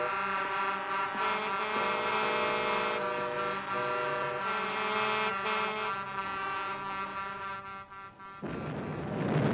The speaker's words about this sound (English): Okay, so everyone, they hear the explosion, they honk. Honk. Honk, honk.